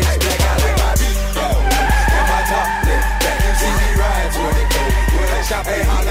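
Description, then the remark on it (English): A car roars loudly as it accelerates, its tires letting out a sustained, high-pitched squeal over the heavy engine rumble for several seconds, intense throughout. “Hit the gas, bitch.”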